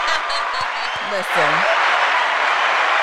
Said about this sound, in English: Woo, woo, woo. Claps.